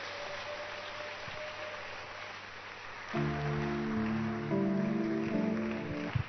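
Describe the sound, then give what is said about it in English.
A crowd claps for the Lord in a dense, steady patter that continues throughout, and about halfway through, loud sustained musical chords join in over the clapping. “Why don't you clap your hands properly for the Lord?”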